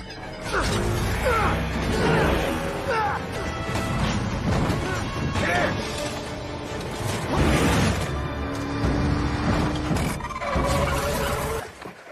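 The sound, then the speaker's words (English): A chaotic car chase from a Terminator film, a Skynet drone chasing the car: repeated loud crashes and smashing impacts, with engine roars, metallic clatter and squealing over a dense, continuous din. “He's gonna leave Kyle behind, but before he can escape, Skynet sends a drone to chase him away.”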